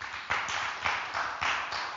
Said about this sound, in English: The choir that you see here, they work so hard. They were here till almost 11 on Sunday, on Friday. They were here up. Please clap for the live singers.